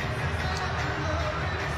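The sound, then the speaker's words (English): An arena crowd cheers in a steady, loud roar, a dense wash of many voices with no pauses or distinct shouts rising above it, at a basketball game between Toronto and the Timberwolves in the fourth quarter as Toronto pulls ahead with 3:01 to go. “Now the crowd is rocking.”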